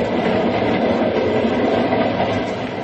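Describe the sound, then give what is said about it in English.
A train rushes along at 60 miles an hour on open track at night, a steady, loud rumbling roar of wheels and cars filling the whole clip with a continuous, rolling noise. “We're running at 60 miles an hour on open track in the dead of night.”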